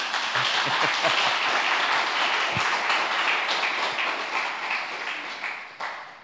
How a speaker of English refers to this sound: There's got to be a round of applause.